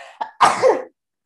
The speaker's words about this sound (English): Oh, that was aggressive. That was aggressive sneeze.